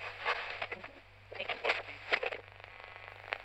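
radio static

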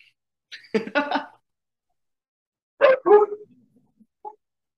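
dogs barking

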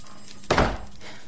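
door being shut

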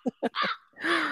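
crow cawing sound effect

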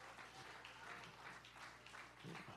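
audience hand clap

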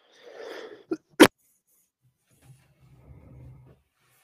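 cough

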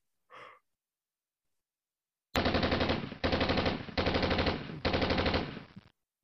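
gunfire sound effect

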